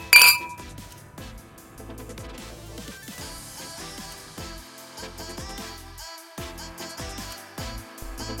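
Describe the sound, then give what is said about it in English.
Glasses clink together once in a toast, bright, right at the start, their ringing tone fading as softer pitched, music-like sounds carry on underneath with no talking. “On that note, cheers. Hey, here's to you. Cheers. Cheers.”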